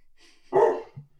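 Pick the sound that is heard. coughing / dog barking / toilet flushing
dog barking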